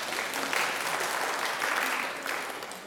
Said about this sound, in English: I'll give him a round of applause. Thank you.